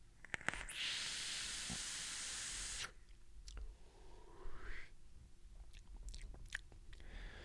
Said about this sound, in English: It's vaping. It's vaping. I vaped it. It's 0.17 on a mech. So it could be a little bit warmer, but seems plenty warm. I don't like that airflow sound. Definitely don't.